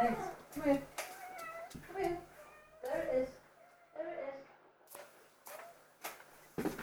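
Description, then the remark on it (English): A cat meows repeatedly, several drawn-out, wavering cries in a loose series, with a few sharp clicks and taps scattered between them. “This is a cat who never eats as well.”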